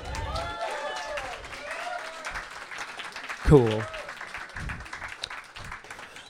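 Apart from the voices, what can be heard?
clapping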